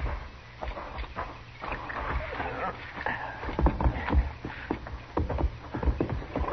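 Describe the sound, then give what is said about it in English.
Horses' hooves clatter along a trail in a steady, uneven rhythm of repeated thuds, moderately loud, with some outdoor background noise, as riders ride out to catch up with a man. “Come on, let's ride him down before it's too late for this poor fellow, whoever he is.”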